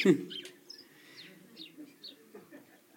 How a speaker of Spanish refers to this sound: Y te puse esto por una razón, porque mira, el autor ve a estas aves, las escucha cantar, ve haciendo su vida ahí y dice, ah, dichosas.